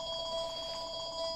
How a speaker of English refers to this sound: Home phone? Well, I was hoping somebody else would pick that up, and they obviously did.